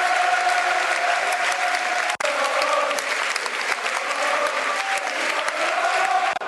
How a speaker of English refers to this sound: Big round of applause for Ben Thompson. You can hear it. One of our own.